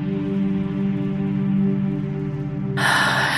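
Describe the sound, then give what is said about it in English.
Over a steady, low ambient music drone, a deep, airy healing breath is drawn in through the nose near the end, a brief hissing rush that lasts under a second. “And we now take a healing breath in through the nose and out through the mouth, breathing in.”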